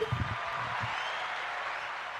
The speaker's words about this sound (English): And I think we've done a very good job since we started. So can we get a round of applause for that?